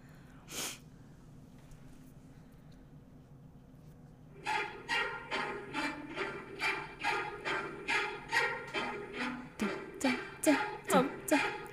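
Garbled, electronic violin-like orchestral music: one sharp burst, a few quiet seconds, then a steady run of rapid, pulsing string-like stabs with wavering harmonics that grow louder toward the end.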